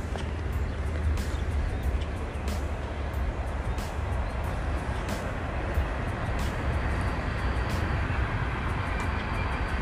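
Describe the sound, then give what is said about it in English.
A train rumbles past, a steady, loud roar of wheels and engine with faint clicks and rattles from the cars, no voices over it. “This is another train.”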